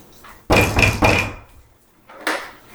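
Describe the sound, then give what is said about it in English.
Firm knocks on the wooden door of a commander's room, two close together followed by a softer third after a short pause, each with a hollow resonant ring fading out. No voices. “You are welcome to knock on the door if you would like.”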